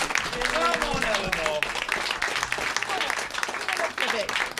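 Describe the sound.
An audience claps steadily and loudly throughout for a guest invited to co-host the show, a dense wash of applause, with voices calling and chattering over it.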